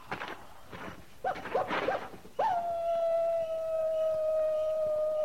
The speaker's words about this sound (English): That's just a coyote. Just a coyote. You act like it meant something, Captain. Not to me.